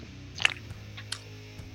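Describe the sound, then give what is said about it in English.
Wet, deliberately exaggerated slurping as someone sips cola, several short sucking bursts spread across a couple of seconds with small mouth noises between them and no talking. “Also, I'm a normal human being and don't make a lot of noise when I drink, but for the benefit of the audio format, I'll exaggerate my slurp a wee bit so that you know when I'm drinking.”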